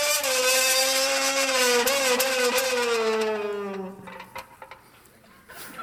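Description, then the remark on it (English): A loud, buzzing race-car engine whine made with a can, holding steady, then sliding downward in pitch like a car speeding past, fading away after about four seconds into faint background clatter. “God didn't intend for you to just have the 30-second thrill of making engine noises with a can.”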